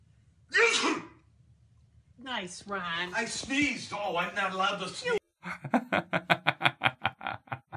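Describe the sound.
A man lets out one sharp, loud sneeze up close, followed after a pause by voices talking and then a burst of rhythmic, pulsing laughter.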